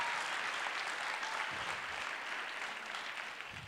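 An audience applauds in a steady, dense wash of clapping that stays loud for the whole stretch and eases only slightly toward the end, with no voices standing out.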